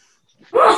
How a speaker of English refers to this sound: Bless you. That's great. Thanks. Bless you again. All right, I tried real hard, but it's allergy season.